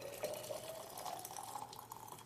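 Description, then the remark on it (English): Hot water pours steadily into a bottle, a continuous splashing gush with a rising tone as the vessel fills, fairly loud with no talking. “I will fill this bottle with hot water.”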